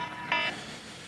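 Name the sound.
alarm going off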